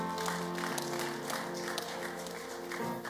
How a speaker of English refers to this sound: Give him a clap of hands.